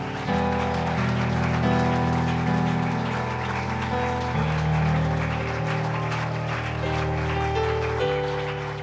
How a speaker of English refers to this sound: Give him a hand clap.